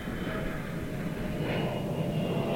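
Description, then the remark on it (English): A UPS cargo plane drones steadily overhead, a continuous low rumble with a broad roar that stays fairly constant and moderately loud throughout, with no one talking. “And then I know, the plane. Another UPS.”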